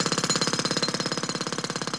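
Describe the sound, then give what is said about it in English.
A road drill about 7 metres away hammers in a rapid, steady stream of sharp percussive blows, loud and continuous, with no voices over it. “A road drill 7 metres away.”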